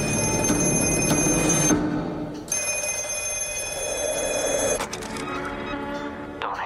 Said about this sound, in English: Then, a mysterious black phone starts to ring.